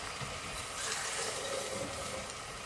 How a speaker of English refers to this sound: And then I'll do what I always do with my bottle of passata, put a little bit of water in it.